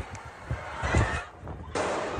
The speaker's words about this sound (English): The sound of gunfire at one of Denmark's biggest shopping malls. There was terror and panic as shoppers ran from a man holding a rifle in a busy shopping centre on a Sunday afternoon.